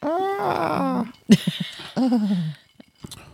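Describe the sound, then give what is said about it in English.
A man lets out a loud, angry roaring yell, a long strained shout falling in pitch, then a short grunt and a second, briefer roar that trails off. “Loud, angry roar, like, ah!”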